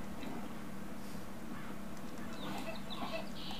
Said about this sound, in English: I'm quite enjoying this area. I wonder why. Is it because it's full of chickens? I think so.